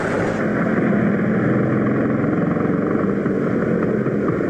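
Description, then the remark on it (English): A Vespa motor scooter engine runs steadily and loudly, a continuous buzzing drone with no change in pitch and no voices over it. “Park a Vespa motor scooter in places that don't exist.”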